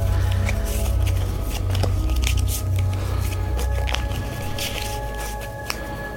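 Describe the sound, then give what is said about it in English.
Stiff tarot cards from an Arcana deck riffle and slap together in a quick, steady shuffle, with short papery bursts over a low continuous hum. “Hold on, let me give it another quick shuffle really quick.”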